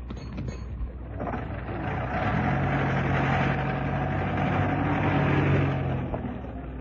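A taxi engine idles outside a house as a man gets out, with a steady low rumble and hum, growing a little fuller after the first couple of seconds and holding evenly throughout, with no voices.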